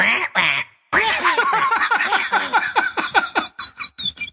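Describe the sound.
A voice squawks and chatters in a parrot-like way, a quick burst, a brief pause, then a loud, rapid string of shrill, quacking syllables.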